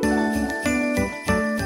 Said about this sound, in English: Okay, cue the bloody Christmas bells.